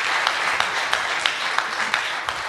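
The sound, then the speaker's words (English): A crowd applauds a girl who got things started, a steady, dense wash of many hands clapping at once with a few sharper claps standing out, keeping an even loudness for the whole stretch. “Let's clap it up for our girl, Emily.”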